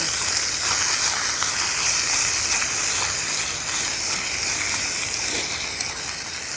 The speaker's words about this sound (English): Sizzle smells amazing. Now all we're going for really is just to brown this venison up. Flip that around a little bit.